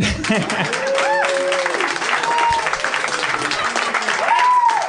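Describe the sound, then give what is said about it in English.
A crowd applauds for crunchy peanut butter steadily for about five seconds, dense clapping mixed with cheers and a few rising whoops and whistles, loud throughout. “A round of applause. Crunchy peanut butter.”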